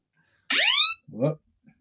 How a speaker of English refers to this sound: No, I accidentally, my phone went off. Did I issue an Amber Alert? You know what's funny? I do this to myself all the time. My phone will go off and I'll hit like the button to ignore it.